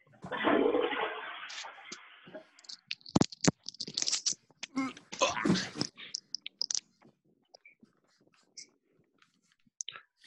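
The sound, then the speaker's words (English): A toilet flushes with a loud rushing surge of water for a few seconds, followed by scattered clicks, knocks and handling noises fading into near silence. “Everyone decided to go for a piss”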